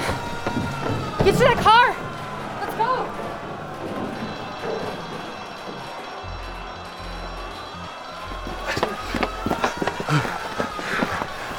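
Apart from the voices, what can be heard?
running footsteps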